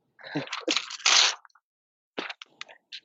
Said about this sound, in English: Oh, that ASMR. The paper rips. Paper rips. Oh, yeah. Gotta love it. You can hear this microphone must be great.